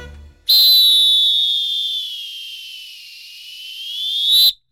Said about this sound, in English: So the next time you go to the pool, listen to those whistles, safety first, and give those lifeguards some credit for their whistleblowing.